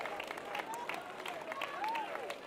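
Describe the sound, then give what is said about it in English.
An audience claps their hands unto the Lord in a dense, continuous wash of applause, with scattered voices calling out and singing faintly underneath. “Why do you clap your hands unto the Lord?”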